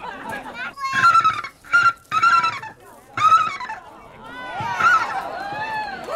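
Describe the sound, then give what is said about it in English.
A contestant at a bird-calling competition mimics a bald eagle call with a run of shrill, chattering bursts, four or five close together, then a wavering trill, loud with brief gaps between. “Bald eagle.”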